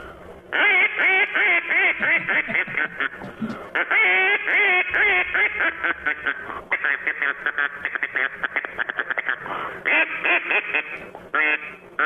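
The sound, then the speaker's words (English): A duck call blown in a studio in quick bursts of raspy, nasal quacks, loud, running in choppy series with brief gaps, mimicking a duck's quacking. “How about that for a duck call?”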